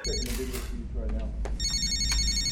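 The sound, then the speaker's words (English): A telephone rings with bright, repeating electronic trills, clear over a steady low rumble, with a brief voice in the background. “Your phone.”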